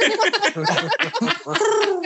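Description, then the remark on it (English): A person imitates a pigeon's cooing with a run of low, throaty voiced pulses, fairly loud, lasting about two seconds with a slight laughing quality. “I'm a pigeon.”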